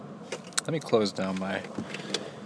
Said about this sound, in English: Let me slide up my windows a little bit. Recording in my car.